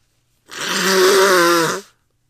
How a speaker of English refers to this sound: I gotta blow my nose. Post-nasal drip.